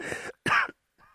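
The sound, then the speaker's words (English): Two sharp coughs in quick succession, the second louder, followed by a softer throat-clearing rasp, all on their own without talk. “All right, don't cough about it.”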